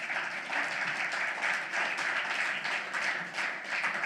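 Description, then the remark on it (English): A church audience applauds the worship team on a morning service, many hands clapping together in a dense, continuous wash that holds at an even level throughout. “Hey, can we just give a round of applause to the worship team?”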